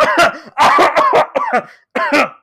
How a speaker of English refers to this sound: Sorry, I'm a little bit of a cough man today.